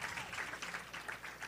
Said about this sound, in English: Yeah, clap for her for support. Yeah. That was nice to share.